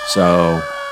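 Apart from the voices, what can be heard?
fire engine sirens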